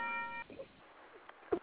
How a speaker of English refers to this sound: I found that bell for you guys. I was like, every show at the end of the show is going down.